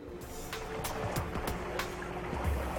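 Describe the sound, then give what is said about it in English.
A sailboat under sail slices steadily through water at about 7 knots, wind at 30 to 40 degrees apparent, with a continuous rushing wash, low rumbling hull noise and occasional splashes and slaps of small waves against the side, moderately loud. “At last, we are sailing with the wind at 30 to 40 degrees apparent and a sog of 7 knots.”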